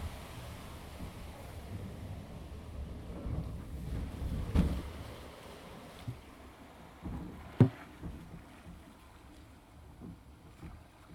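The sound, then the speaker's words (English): A log flume ride boat on Splash Mountain, recorded from the front row, glides through water with a steady low rumble and sloshing, broken by a few sharp knocks and splashes, with no one speaking. “Front row and Splash Mountain, everybody.”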